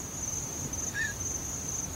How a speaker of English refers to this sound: I hear crickets.